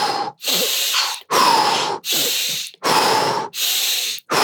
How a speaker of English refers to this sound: I like to do like a daily practice of breathing techniques where I first breathe in through the nose, like, and then very explosively out through the mouth.